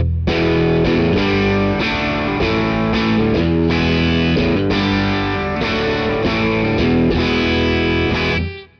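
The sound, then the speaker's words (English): A loud electric guitar riff with mild overdrive, played through a Deluxe Reverb amp on the 30 setting: chords and single notes in a steady rhythm for several seconds before ringing out and fading. No one speaks. “I'm on the Deluxe Reverb now, and I have the 30 something on. I have it on the 30 setting.”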